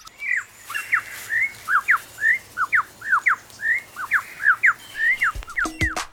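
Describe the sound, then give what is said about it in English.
A male songbird in a forest pours out a rapid, varied string of whistled and slurred phrases, copying the songs of the other birds he hears around him, clear over a faint hiss, with no one speaking. “To persuade females to come close and admire his plumes, he sings the most complex song he can manage, and he does that by copying the songs of all the other birds he hears around him.”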